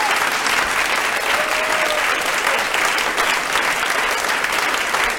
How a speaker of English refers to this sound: So, deserves an applause.